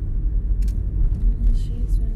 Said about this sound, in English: In a car, driving from one life to the next, it's like you're suspended in time and space.